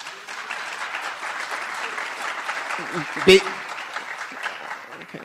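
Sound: audience applause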